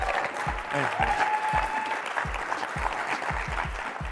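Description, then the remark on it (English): An audience breaks into steady, dense applause, many hands clapping at once in a continuous loud wash, with a few duller low thumps scattered through it. “Let's thank give him one more round of applause.”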